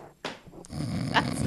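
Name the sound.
voice imitating a snore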